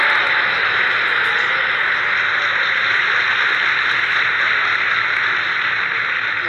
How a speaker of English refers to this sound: So we see him throw 5 cards straight in from about 6 feet away, and there's a very loud applause from the audience when he finishes this, which I'm going to play.